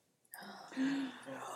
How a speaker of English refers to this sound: Collective gasp.